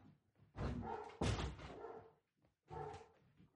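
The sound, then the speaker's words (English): A big, fluffy German Shepherd dog barks in two deep, booming bursts, sounding muffled behind several closed doors, with a brief quiet gap between them and no talking. “She's a big, fluffy German Shepherd with a just giant set of lungs. Yeah. And really can let it bark.”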